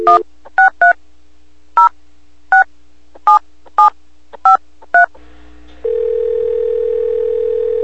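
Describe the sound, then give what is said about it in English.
A rapid series of about ten short, bright touch-tone beeps as a number is dialed to call a guest for an interview, followed by a steady, continuous telephone tone that holds for several seconds. No voices are heard. “He's got some good stories to tell, and we're going to give him a ring right now.”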